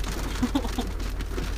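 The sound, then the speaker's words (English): Steady rain patters on a hard surface, a dense, even hiss that stays constant throughout, with a few faint soft tones rising briefly above it. “I think it's going to start raining hard again.”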